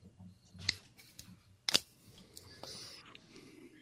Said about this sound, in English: As I've knocked my camera again, one moment. Usually the cord's not sitting just off to my right here like it is today for some reason. So that's the problem there.